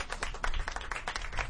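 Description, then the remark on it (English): Audience applause for Joanne Delgado, a sitting justice of the peace who is also running for office: a steady patter of many hands clapping at once, dense and moderately loud, with no voices standing out. “Applause for her.”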